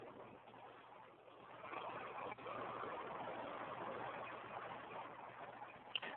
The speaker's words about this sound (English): There you go. That was a tractor going past. Oh, right, okay. I wonder what it was.